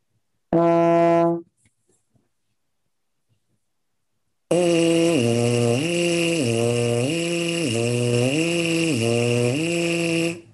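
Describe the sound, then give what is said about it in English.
A brass player sounds one short, steady low F as a pitch reference, held under a second. After a pause comes a long, loud buzzing tone in the mouthpiece that repeatedly steps up and down in pitch. “So first I'll play my F, get my pitch reference.”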